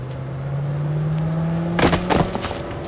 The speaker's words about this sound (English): Ready? Steady? Wait for it. Car.